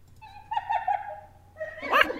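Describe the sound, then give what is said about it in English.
Hyena calls played back from a device: a long, wavering, high-pitched whine that drifts steadily, followed by a louder, sharper yelping cry at the end, with no talking. “They're laughing. It sounds like hyenas are like, it sounds like they're laughing.”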